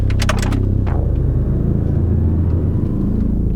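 A car engine rumbles with steady low road noise, a few sharp crunching clicks near the start as the car turns around on the road to go back. No one speaks.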